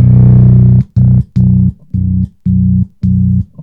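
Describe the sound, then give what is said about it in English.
A loud, low distorted bass guitar tone through an MXR pedal with chorus rings out, then gets chopped into six rhythmic bursts with brief silent gaps between them, like a stuttering on-off effect. No talking. “But this tone here is my main dirty tone, my main one-sided tone. It is the MXR in the chorus.”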